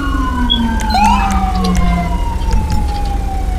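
ambulance siren

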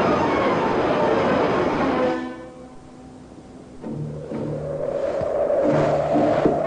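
train travelling on rails

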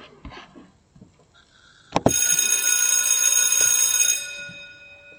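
school bell ringing

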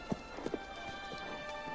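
horse hooves clip-clopping

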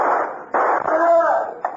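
gunshots

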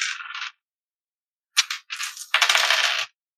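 ten dice being rolled

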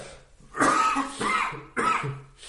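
coughing

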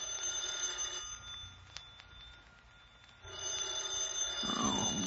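telephone ringing

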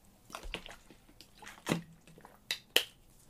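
person drinking water

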